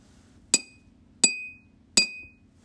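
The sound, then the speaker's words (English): A spoon knocks three times at an even, unhurried pace, each strike a bright, ringing clink with a short metallic tail, over a faint low background hum. “When your baby completes the knocking, please give your baby a big hug and kiss.”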